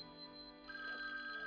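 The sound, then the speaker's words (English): A telephone rings with a steady electronic tone that shifts to a higher note partway through, heard fairly quietly and alone with no voices. “Answer the phone.”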